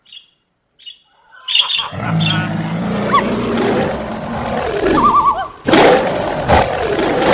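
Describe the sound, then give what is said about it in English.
A couple of brief high chirps, then a loud bear roar sound effect, the angry West Hollywood bear, used to signal that time is up: a long, harsh, rumbling growl with rising and falling pitch that lasts several seconds, with no talking over it. “You better wrap it up after that or else you're going to bring out the angry West Hollywood bear.”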